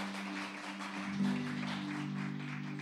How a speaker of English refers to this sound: Let's give the Lord the loudest clap offering that we can give.